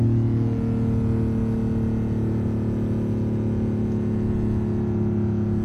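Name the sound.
sports car engine running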